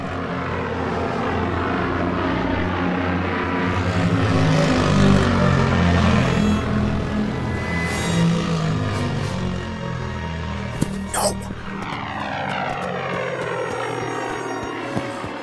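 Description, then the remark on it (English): A loud, droning ship engine builds in power, then rushes away with a falling whine, the roar trailing off. No voices. “Warm up the engines.”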